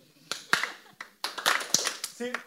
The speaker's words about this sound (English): Everyone together, like we're doing, what's the thing? If you're happy and you know it, clap your hands. Just real quick, just...